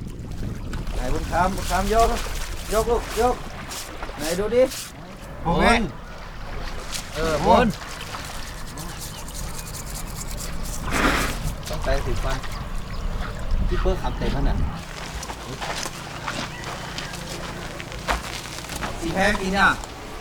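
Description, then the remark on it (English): Elephants bathe in a river, water sloshing and splashing with several loud bursts of splashing over a steady outdoor wash, while voices chatter and call out throughout. “Every day, … takes the elephants to the nearby river for a cool bath.”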